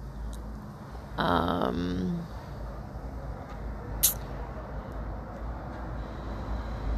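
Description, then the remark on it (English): Steady low rumble of nearby street traffic right above a train station, with a brief harmonic whine around one second, like a braking vehicle or train, and a sharp hiss of air brakes near four seconds. “It's peaceful even next to the traffic.”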